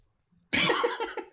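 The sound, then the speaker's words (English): A single harsh cough bursts out after a moment of quiet, trailing into a rough, raspy exhale that lasts nearly a second. “I cough.”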